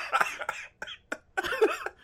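A person coughs several times in quick, uneven bursts, fairly loud, with a short pause midway before a final harsher fit of coughing.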